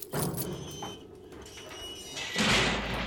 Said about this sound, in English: Go into the cell in the far corner and close the door behind you.